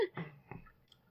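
Soft, wet chewing on candy, a few irregular mouth clicks and squelches spread across about a second, fairly quiet and with no talking.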